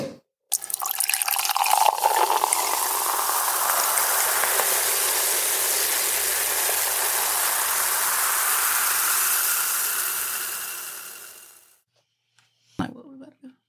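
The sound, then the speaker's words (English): Wine, a Charles Woodson Intercept Pinot Noir, pours steadily for about eleven seconds with a fizzing, bubbling hiss, loud, then cuts off, followed by a brief clink or knock. “It's bubbly time. Bubbles. Bubbles. Bubbles.”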